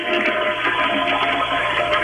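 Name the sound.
toilet flushing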